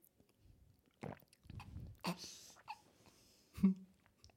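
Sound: loud swallowing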